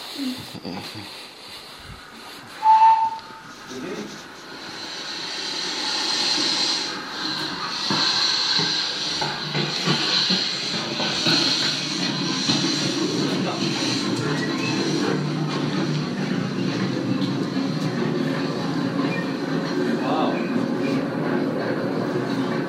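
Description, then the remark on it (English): A steam train gives a short whistle near the start, then rumbles and hisses steadily as it runs past, loud, with a broad, continuous mechanical roar. “Here's a little video with me and a steam train.”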